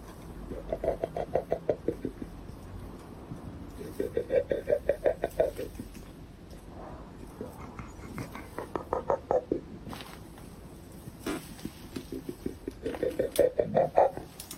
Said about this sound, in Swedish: Men då får man höra ljudet. Ett konstigt gutturalt klickande, högst olikt någonting jag har hört tidigare.